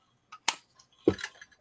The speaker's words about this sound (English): Excuse me. Drink some water. Yeah. Drink that water, fam.